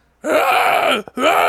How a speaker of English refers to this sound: You know the grunting and screaming, the sounds that the Belial, his deformed brother that they cut off the side of him, were making?